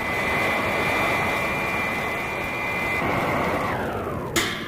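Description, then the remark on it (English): The loud, steady engine of Wonder Woman's robot plane roars with a high whine, then the pitch winds down as the plane slows to rendezvous with the Psy Women's command ship and hover, ending with a brief sharp burst of noise. “Robot plane slow to rendezvous with ship and hover.”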